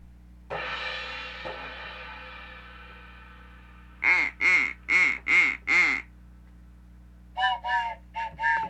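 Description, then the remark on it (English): A phone sound effect: a sustained buzzy tone fades out, then five evenly spaced quack-like honks ring out, followed by three quicker ones, loud and with no talking. “Oh, it's my phone effect.”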